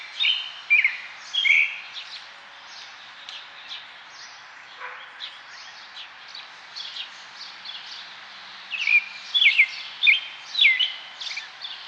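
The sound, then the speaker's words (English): Birds chirp and tweet steadily outdoors right outside a window, several calls overlapping in quick bright bursts, one bird sounding close and louder while others twitter farther off against a soft background hiss. “That's really the sound right outside my window right now. Do you ever just sit outside and listen to birds?”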